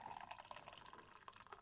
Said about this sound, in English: I'll just pour a cup of tea for Karina. There we are.